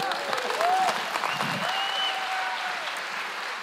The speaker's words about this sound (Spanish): Gracias, Samuel. Un aplauso, Samuel.